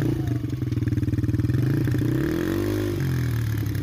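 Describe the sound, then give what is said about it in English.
The engine of a Goat ATV idles with a steady, rapid putter, then revs up in a rising and falling whine before settling back to a loud, throbbing idle. No one speaks. “Let's, bust up in the ATV, the Goat ATV, and pick up these bastards.”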